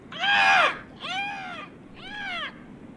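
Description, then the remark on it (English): A voice imitates two bird-like creatures flying towards the listeners, with three screechy, arching calls in quick succession, the first the loudest, each rising then falling in pitch, with short pauses between and no other talking. “Because flying towards you, you see two bird-like creatures. You can hear their”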